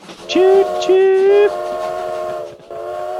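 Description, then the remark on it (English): A train whistle sounds two short loud blasts, then holds a steadier, softer tone over a low rolling rumble of a moving train. “Choo-choo!”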